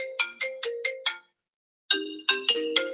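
A mobile phone ringtone plays a quick run of bright, bell-like tones, pauses for almost a second, then repeats the melodic phrase, clear with no voices.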